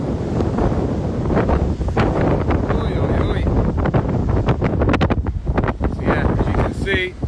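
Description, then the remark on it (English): Strong wind roars across a ship's deck in the Drake Passage, buffeting the microphone with loud, continuous low rumbling and gusty bursts throughout, unrelenting. “But you can kind of see when you get to this point, it becomes super, super windy.”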